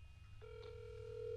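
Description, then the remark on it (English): A steady electronic phone ringback tone of an outgoing call to a friend's number starts partway through and holds on continuously, heard through a speakerphone over a low background hum, with no voices. “Wait, is it ringing? Yeah.”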